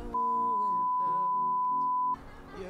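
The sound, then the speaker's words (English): A recorder's start beep, signalling that recording is rolling: a single steady electronic beep at one mid-high pitch holds for about two seconds over a quieter humming, tonal backdrop, then cuts off abruptly into rougher background noise. “It's rolling. I heard the beep.”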